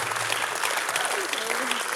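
An audience in a church claps steadily as a speaker comes on stage, a dense, continuous round of applause, a bright crackling wash that holds at an even level for about two seconds with no voices over it.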